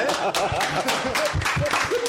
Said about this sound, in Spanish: ¡Aplauso!